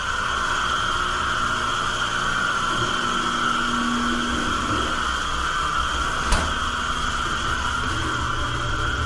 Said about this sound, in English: It's a dryer.